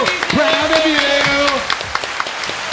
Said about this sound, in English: I thank our studio audience for that round of applause.